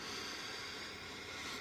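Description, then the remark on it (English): A slow, deep four-second inhale for box breathing, heard as a soft, steady airy hiss, fairly quiet and continuous with no talking. “So box breathing is something really cool to do. And it's super easy. One more time. 4 seconds in.”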